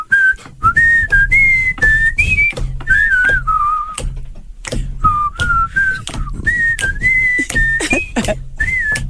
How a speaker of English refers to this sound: Okay, yeah, he can't whistle and laugh at the same time.